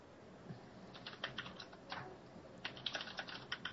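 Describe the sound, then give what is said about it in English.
Rapid clicking of keyboard keys, irregular bursts of overlapping taps as several people type at once, fairly quiet with a steady low hum underneath and no talking. “You can hear everybody typing.”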